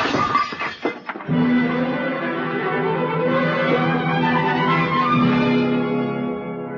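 A loud clattering crash of dishes shattering, several sharp impacts packed into the first second, followed by a steady, sustained low droning tone that carries on to the end.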